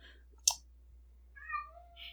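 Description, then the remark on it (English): A sharp click is followed a second later by a single short meow from a cat named T'Challa that slides downward in pitch, moderately loud, with no talking. “Someone's cat remembers it, though.”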